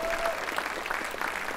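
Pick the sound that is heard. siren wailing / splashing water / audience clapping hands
audience clapping hands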